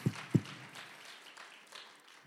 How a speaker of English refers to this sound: That is worthy of a praise. Clap your hands and celebrate the goodness of the Lord with me.